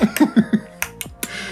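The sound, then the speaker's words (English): A person makes mouth clicks imitating bat sonar: four quick, evenly spaced clicks, then three sharper, crisper clicks with short pauses between them, with no talking. “Or you develop sonar sensors and like a bat. Just like clicking.”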